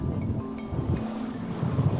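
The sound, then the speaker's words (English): A boat engine drones steadily over open water as the boat cruises along Old Fort Bay, its low rumble mixed with wind buffeting the microphone and the wash of water, with no voices. “The best view, however, comes by circling it in a boat.”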